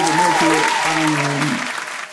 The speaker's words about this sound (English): Let me get some hand claps